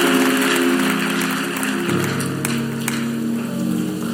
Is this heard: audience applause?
yes